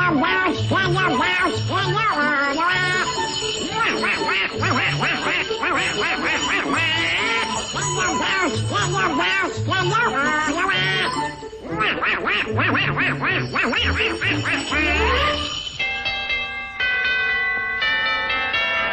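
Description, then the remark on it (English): A quacking cartoon duck voice, Donald Duck from a Disney cartoon, sings Jingle Bells over a bouncy, loud musical accompaniment with chiming bells. The raspy, nasal melody runs continuously, and the last few seconds shift to bright sustained tones. “Absolutely love that part with Donald singing Jingle Bells.”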